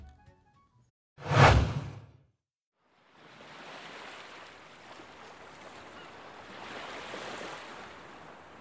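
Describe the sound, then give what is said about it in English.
Ocean waves: one loud wave surges and crashes, a brief pause follows, then steady surf rushes and hisses, swelling again toward the end. No voices. “Hey, it's me, the sea.”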